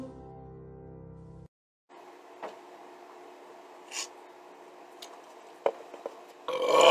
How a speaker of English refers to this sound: Oh, excuse me. Sorry. I shouldn't have belched like that, but, oh.